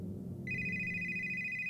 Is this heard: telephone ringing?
yes